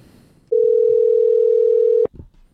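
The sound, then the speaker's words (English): A telephone call being placed: one steady, loud, mid-pitched ring tone holds for about a second and a half, then cuts off with a click and a little faint line noise. “Let's give this person a call and find out how they find farts so hot.”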